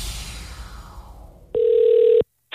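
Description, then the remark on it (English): A fading wash of noise gives way to a single steady, loud electronic ring tone on a phone line, followed by a brief pause and the start of a second ring. “Did you just answer the phone?”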